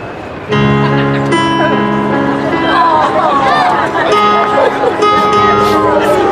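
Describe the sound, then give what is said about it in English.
Live mood music starts after a brief pause, with steady, sustained chords that hold rich, organ-like tones and carry loudly throughout. Voices murmur and chatter underneath. “why don't you play a little mood music? Help cheer up our friend here. Something peppy.”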